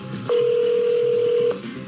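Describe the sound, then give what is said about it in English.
A single steady electronic phone tone sounds clearly for about a second over faint background hiss as cybersecurity expert Jim Stickley places a phone call to a reporter's mother. “Cybersecurity expert Jim Stickley sets up his phone to call my mom, posing as me.”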